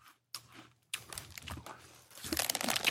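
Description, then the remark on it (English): A potato chip bag crinkles, starting with a couple of short rustles, then settling into continuous crackly handling that grows louder and busier toward the end. No one speaks. “I don't think anyone wants to listen to a podcast where we're chewing our potato chips.”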